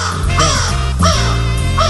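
A crow caws loudly, three harsh calls in a steady rhythm about half a second apart, with no talking.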